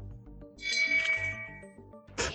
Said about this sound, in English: Where's my shame bell? Did I uninstall my shame bell? Oh, no. Here it is.